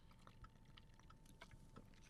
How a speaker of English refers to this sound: How long was I holding that drink there? Had to be a second. I was driving myself nuts. I was like, take the sip